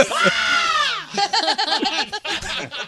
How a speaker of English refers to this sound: But no, how would you like it if every time you walk by someone they started screaming like that? No. As a matter of fact, they do that to scare you, but they do that while they're running away.